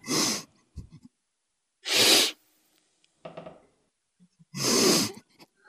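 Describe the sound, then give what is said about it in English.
Three loud, sharp sniffs through the nose, made as part of a sniffing game, spaced a couple of seconds apart, with quieter breathy snuffles in between and no talking. “I'm going to sniff, and then you sniff.”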